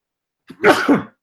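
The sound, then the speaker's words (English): A single sneeze: a short sharp intake followed by a loud, breathy burst lasting about half a second, then silence. No talking. “Now it's me sneezing.”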